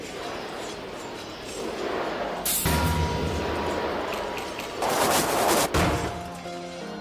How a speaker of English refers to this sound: For the first time on a European battlefield, the English used gunpowder to fire cannonballs at the French forces. The French knights now faced volleys of thousands of arrows amidst the crash of cannon.